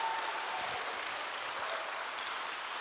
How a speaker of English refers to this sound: Come on, if we're going to clap, let's give God a big clap of praise.